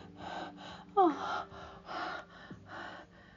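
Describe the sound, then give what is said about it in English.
A sharp gasp for air cuts in about a second in, a quick rising intake of breath amid a series of soft, breathy exhalations with no speech. “When I gasp for air a few seconds later, I pull away from both of you and lie down in a ball in between quivering aftershocks.”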